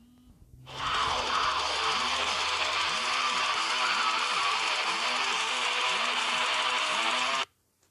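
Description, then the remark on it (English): A wake-up alarm set for 8 o'clock goes off: a loud, harsh, dense buzzing with a low warbling pulse repeating steadily about twice a second for several seconds before stopping abruptly. “My apologies, that was an alarm of mine stating that it is 8 o'clock and I should get up, even though I am already awake.”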